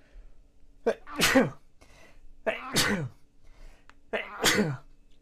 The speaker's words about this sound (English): I sneeze at the worst times.